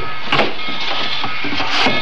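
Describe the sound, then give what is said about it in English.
Wooden freight boxes, unloaded with other freight at a train depot, bump and knock together in an irregular series of dull, hollow thuds, with creaks and scraping between the impacts and no voices. “I could feel other boxes being bumped against me.”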